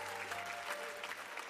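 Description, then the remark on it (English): A church audience in Palm Bay claps steadily together in praise one morning, a dense, even wash of applause from start to finish, with a faint sustained hum underneath. “Can we give the Lord a great hand clap of praise this morning?”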